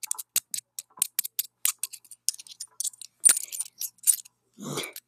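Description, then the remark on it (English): Coins clink and tap together for ASMR in a quick, irregular series of bright metallic clicks, with a few ringing chimes and a soft rustling shuffle at the end. No one speaks. “ASMR. We'll go ahead with the Sprite can. All right, now with the coins.”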